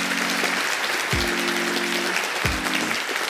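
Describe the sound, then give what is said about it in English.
A crowd cheering and applause sound effect: a large crowd cheers and applauds continuously, a dense, loud wash of clapping, with low droning tones and a couple of deep swooping whoops rising from the crowd. “Give me a giant cheer if Heather Miracle is your favorite twin between the two twins of Sugar Cookie Marketing.”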